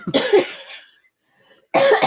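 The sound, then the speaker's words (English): A harsh, hacking cough from a lingering drip after an illness, likened to the cartoon dog Muttley, comes in two loud bursts, the first rough and spluttering for most of a second, then a brief quiet gap before another strong cough erupts at the end. “My coughing that you hear is not, what the hell was his name?”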